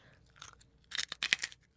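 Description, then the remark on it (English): Crisp, brittle crunching of pork cracklings from the Tube South restaurant being bitten and chewed in a studio at the Southern Food and Beverage Museum: a few soft crackles, then a loud run of four or five sharp, rapid crunches. No one speaks. “That's a well-made crackling right there.”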